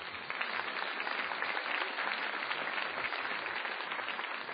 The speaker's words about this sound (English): And I'd just like to invite one more round of applause for Robert Rosenkranz, please.